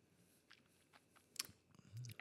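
A quiet sip of gin from a glass: a few soft, wet mouth clicks, then a short slurp and a low gulp near the end, with no talking.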